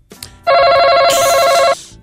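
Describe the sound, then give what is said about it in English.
A loud game show buzzer blares as a harsh, steady electronic tone for just over a second, with a brighter, hissier layer joining partway through before it cuts off abruptly. “One hand behind your back, one on the buzzer”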